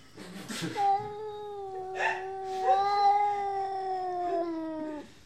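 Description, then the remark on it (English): Two cats, Jellybean and a neighbor's cat, caterwauling at each other through a screen door in long, wavering, drawn-out yowls that rise and fall over several seconds, loud, with overlapping voices swelling midway through. “They often sit completely still, staring at each other through Becky's screen door and making this otherworldly noise.”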